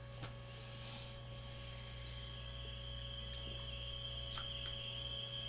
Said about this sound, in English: We got crickets. Or birds? Does sound like crickets, doesn't it?